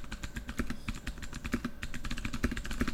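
Rapid typing on a computer keyboard to search something on Google, a steady stream of sharp, clicky keystrokes with short irregular pauses, heard alone without any voices.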